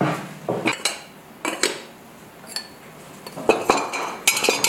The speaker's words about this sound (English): Some of my favorite videos of his are unloading the kiln, where you can hear all of the tinkly sounds of the pots and mugs and vessels as he takes them out. It's so soothing.